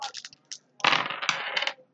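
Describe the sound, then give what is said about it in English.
A few light clicks, then dice clatter and tumble across a hard tabletop for about a second, fairly loud, with no one talking. “So you need to roll your armor”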